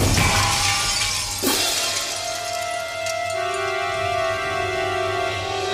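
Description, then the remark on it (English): A loud bomb explosion bursts out, shattering the window glass of a store, followed by a second crash, then lingering bright ringing tones as the glass shards settle. No voices. “As the bomb exploded, Ernest jumped inside the smashed window of a nearby store.”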